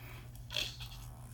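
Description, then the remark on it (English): One short, soft slurp of tea being sipped, a brief airy burst against a steady low hum, with no talking. “Let me sip my tea.”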